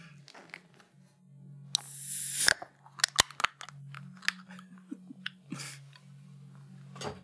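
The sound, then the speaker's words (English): Orange juice containers being cracked open: a rough, crackling rush as a seal gives way, then several sharp plastic snaps and clicks, with a low steady hum behind and no talking. “I'm going to have myself some orange juice. There you go. Let's crack these motherfuckers open.”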